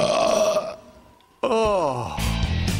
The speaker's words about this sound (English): I got a pie belch coming. It might break your windows.